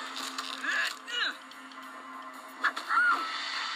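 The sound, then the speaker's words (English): A parrot squawks harshly in two short bursts, roughly a second apart, while being choked, cutting through a steady hissy background. “Don't choke the parrot, Cole!”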